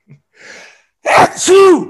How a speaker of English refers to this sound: I'm going to sneeze here.